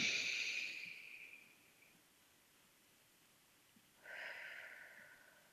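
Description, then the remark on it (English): A long, hissy deep breath drawn in through the nose fades out, then after a quiet pause a soft, airy breath is blown out through the mouth, like through a straw. Gentle, with no talking. “I invite you to take a deep breath in through your nose, all the way to your toes, and then out through your mouth, like through a straw.”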